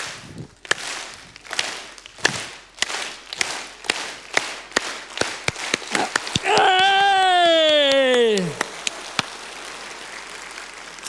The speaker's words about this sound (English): The sound of applause. Everybody likes the sound of applause.